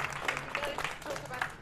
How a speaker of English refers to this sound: So give a round of applause for these guys here.